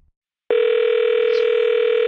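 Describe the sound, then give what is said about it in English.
A telephone call is being placed: a steady, loud telephone tone starts abruptly after half a second of silence and hums on unbroken to the end, a flat electronic buzz with no voices. “Let's give her a call, because in this state, really, I think I can do the most help or damage or fuck this up most thoroughly if I actually get this poor woman on the phone and walk her through her problem.”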